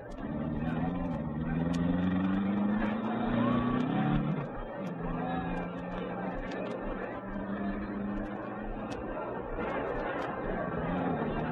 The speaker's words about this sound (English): The cars were being driven slowly into their starting positions along the track.